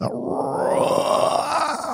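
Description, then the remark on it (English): A person vocally imitates a deep, drawn-out roar heard way up on top of a mountain, a single sustained growling sound lasting about two seconds, loud, with no other speech. “A really elongated, deep roar.”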